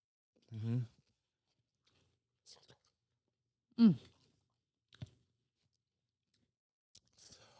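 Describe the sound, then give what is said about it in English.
Someone chews food in sporadic, soft, crunchy bites with quiet pauses between, mixed with a couple of short hummed murmurs but no clear speech. “We're eating moo like this now.”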